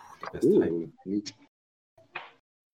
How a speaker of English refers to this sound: Ooh. What was this on? You kind of cut out during that.